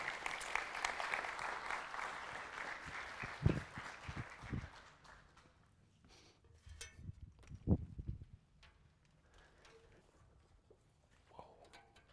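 An audience applauds loudly for several seconds to encourage two speakers invited up to talk about anxiety, the dense clapping gradually thinning out into scattered claps, footsteps and shuffling noises.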